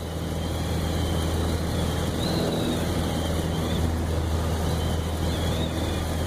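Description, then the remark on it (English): A small chartered propeller plane's engine drones steadily in flight from Anchorage, Alaska, in November 2014, recorded on a phone: a loud, constant low hum with a whooshing, windy roar layered over it and no pauses. “In November 2014, curious to see the pass for myself, I flew to Anchorage and chartered a small plane. At the time, I only had my crappy phone to record some audio.”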